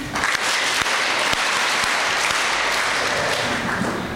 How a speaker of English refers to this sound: All these people make this school happen. They need a big clap.